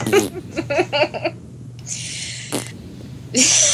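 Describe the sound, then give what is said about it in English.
A voice makes a mouth-made fart noise meant to be a pfft: several short buzzy lip bursts in a quick row, then two longer breathy, hissing pffts, with a brief gap between them. “So anyway, why do you do fart noises now? Well, it was supposed to be like a pfft.”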